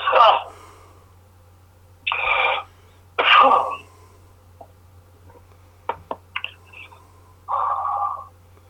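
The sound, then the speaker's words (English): A series of harsh coughs and throat-clearing bursts from someone who swallowed beer while smoking a cigarette, several spaced across a few seconds, with a few short clicks in between and a low steady hum underneath. “Sorry for the cough.”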